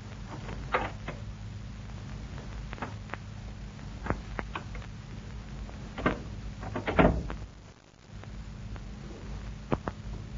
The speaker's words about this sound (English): Shh. Somebody's at the door. He's trying the knob.